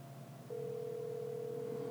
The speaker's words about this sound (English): No, he ain't answer. What ring was that? You seen that was four, right? See? You see? Still ringing